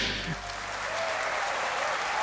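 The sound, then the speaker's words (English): Steady, dense applause from a crowd at the end of a music track, a continuous crackle of many hands clapping at an even, fairly loud level throughout, with no voices standing out. “So, and then after all this skronk and all this blah, blah, it ends with like this applause at the end.”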